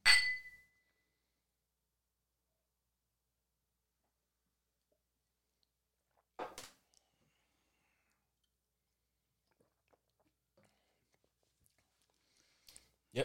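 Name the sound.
glasses clinking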